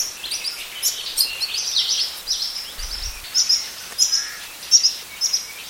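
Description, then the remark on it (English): Young Hawaiian creepers (alawi) give a steady stream of high, thin begging calls, repeated insistently in overlapping bursts, against a quiet forest background, as the fledglings follow their parents around the forest begging for food. “For the next few months, these keiki noisily follow their parents around the forest begging for food as they are learning to better forage for themselves.”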